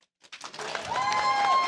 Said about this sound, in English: By applause, who's the grossest?